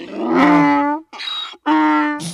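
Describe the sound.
A donkey brays loudly, alternating strained, harmonic honks with a rough, wheezing intake of breath: a hee-haw that repeats over a couple of seconds with no talking.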